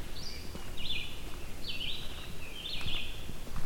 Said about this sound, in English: I kind of doubt these are the last red-eyed vireos I'll be able to record this year